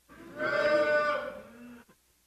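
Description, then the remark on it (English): A crowd of voices imitates a cow, joining in one long, drawn-out mooing sound that swells and then fades over about two seconds, with a bit of scattered laughter-like noise at the end; they say moo on reaching 2 Thessalonians chapter 2. “When you get there, say moo.”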